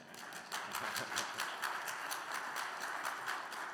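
Steady applause from a crowd, a dense crackle of many hands clapping at once that holds at an even, fairly loud level for a few seconds with no voices.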